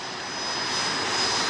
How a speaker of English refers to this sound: Ladies and gentlemen, earlier today, the World Wrestling Federation corporate jet landed here in Charlotte, and there you saw WWF Commissioner Mick Foley awaiting the arrival of the plane.